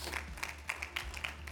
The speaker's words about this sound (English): Come on, y'all, give the Lord a hand clap of praise this morning.